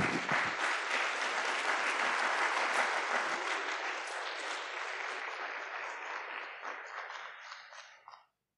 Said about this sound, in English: Okay, one big final round of applause for our primary winners.